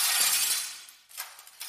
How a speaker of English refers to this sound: Moose crashes through the supermarket window and gallops down the street.